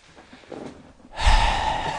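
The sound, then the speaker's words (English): A voice imitates the sharp, loud gasp a singer makes between lines on a vocal track, right into the microphone, a sudden rush of breath that starts after a quiet, breathy lead-in and holds for nearly a second. “Like, they've just gasped.”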